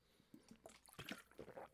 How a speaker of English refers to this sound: Let me get a little water here.